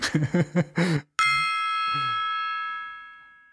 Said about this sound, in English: Why does that always happen? I always miss the gong.